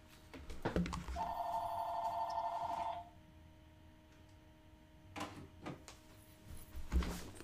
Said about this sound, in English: Sorry about that, everyone. The phone just started ringing, so I had to get that turned off real quick.